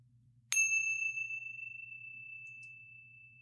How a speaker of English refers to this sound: Now wiggling your fingers, wiggling your toes, and when you hear the sounds of the chimes, coming back into this space.